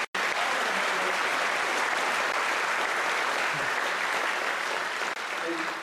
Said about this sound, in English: Just between us, we probably should have clapped a lot louder because they're all over across the hall serving in their other ways.